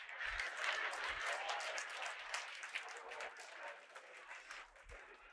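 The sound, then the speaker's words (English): Four people clap steadily for about five seconds, a continuous patter of hand claps with no voices, at moderate volume. “4 people clap.”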